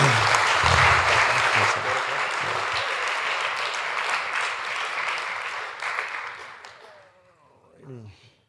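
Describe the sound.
Loud, sustained applause from an audience fills about seven seconds with dense clapping, then fades out, followed by a brief murmur of voices at the end.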